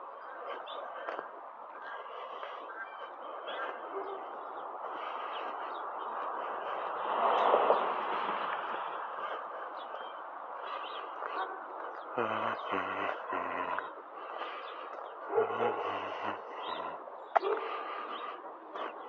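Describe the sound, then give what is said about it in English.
A group of a woman's ducks quacks continuously, a busy overlapping chorus with louder, harsher bursts of quacking toward the end. “Oh, she's got ducks.”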